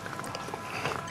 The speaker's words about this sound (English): I think that's the scariest part of this commercial for those people, because he's really like, he's really slurping it down. They've got him really mic'd up on that slurping.